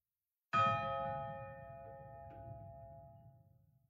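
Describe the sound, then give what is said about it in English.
A large bell is struck once, loud, its rich metallic tone ringing out and slowly fading over several seconds above a low outdoor rumble. “it's been rung anytime a high school soccer team or baseball team or any of the teams win a game.”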